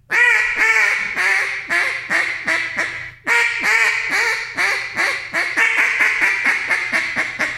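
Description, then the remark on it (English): A small duck hen swimming by quacks in two loud descending runs of rapid, raspy calls, each series tapering off before starting again, with no talking. “And then you'll hear that one, I guess, little small hen that swims by her and is like, hey, Mom, what you doing?”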